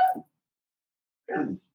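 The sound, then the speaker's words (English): A brief, soft whimper from a female dog, then a second of quiet before a short muffled shuffle of movement; no one speaks. “Can you see what this dog is doing?”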